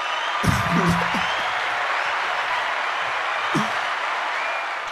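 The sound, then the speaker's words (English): A crowd claps steadily for the full few seconds, a dense wash of applause with a couple of voices briefly shouting and calling out over it. “Let me get a round of applause, man.”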